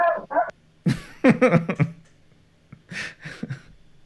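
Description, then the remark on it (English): Dogs bark in a quick series of sharp, fairly loud yaps, several clustered bursts with short pauses between them, with no talking over them. “dogs have been an integral part of the show, I think, since the beginning, basically.”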